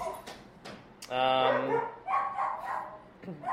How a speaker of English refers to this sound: Was that Luna growling? Yes, it was. She gets so angry.